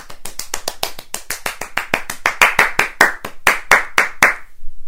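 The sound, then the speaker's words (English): Quick, steady hand claps as the audience applauds themselves for guessing in a game, about five or six a second, crisp and evenly spaced, continuing for several seconds and then stopping abruptly. No voices are heard. “Give yourselves a round of applause for doing some excellent guessing.”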